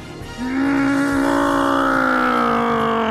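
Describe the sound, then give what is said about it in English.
A voice imitates an aircraft engine, asked for as a jet noise but sounding like a propeller plane, with a steady, sustained buzzing drone. It starts quietly, then swells loud within half a second and holds a constant pitch for about three seconds. “Can you give us a jet noise or something?”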